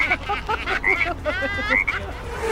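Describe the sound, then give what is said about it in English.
A chorus of frogs croaking in an infield pond, a dense overlapping run of warbling, chirpy calls with a low rumble of background noise underneath. “Oh, they playing with the frogs. In the infield pond.”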